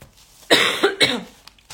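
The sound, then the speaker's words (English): Two quick, dry, loud tickly coughs in close succession, followed by a brief throaty rasp and quiet breathing. No one speaks. “And yeah, one of my things is really bad tickly cough, all right? So excuse me, all right, if I go into any coughing fits, but I've got my Halls soothers, I've got drinks, all right?”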